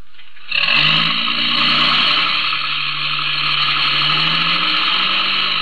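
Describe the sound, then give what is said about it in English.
A truck engine abruptly starts up with a loud, rough roar, then keeps running steadily, its pitch shifting slightly as it pulls away. No voices. “Get in the truck.”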